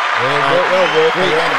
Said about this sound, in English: We reserve the special applause for special people, and I think you've earned it, mate.